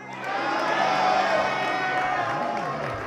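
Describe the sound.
A church audience, on a count of three during a morning service, erupts in loud, sustained cheering and shouting, a dense wall of many voices that holds steady for about three seconds with a few higher whoops rising above the roar.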